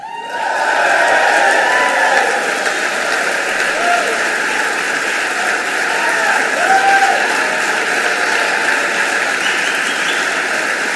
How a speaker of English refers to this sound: That's a lot of applause, actually. Too much applause, actually. I thought there was going to be more.